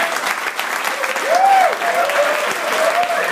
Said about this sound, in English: And we want to thank you guys for all the hard work and community service you guys do. Let's have another round of applause for the Sigma Phi Epsilon Edge National Convention.